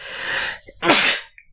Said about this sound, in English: Man, I really wish I didn't have to sneeze in the middle of that sentence that I was saying.